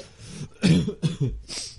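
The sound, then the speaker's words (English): A short run of harsh coughs, about three or four rough bursts in quick succession with a throaty, slightly laughing quality, and no talking around them. “it's kind of a cough, to be honest with you, this week.”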